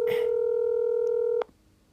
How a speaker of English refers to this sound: It's ringing.